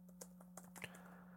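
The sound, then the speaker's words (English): A handful of quick, light keystrokes clack on a computer keyboard in an irregular burst, fairly quiet, over a low steady electrical hum with no voices. “Thank you, keyboard.”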